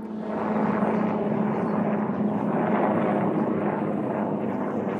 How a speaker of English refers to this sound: For sure a helicopter, by the way. No. That could be a plane. That's no, it's a helicopter. I'm looking at it. That's a heli.